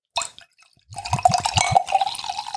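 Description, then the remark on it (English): A brief clink, then tonic water from a bottle glugs and splashes into a glass, with rapid bubbling pulses settling into a steady fizzing pour, fairly loud. “Pour some tonic in.”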